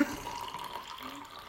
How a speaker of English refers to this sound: Drink's nearly finished. Do you want to pour me another one? Of course. Sure. There's quite a lot in there, actually.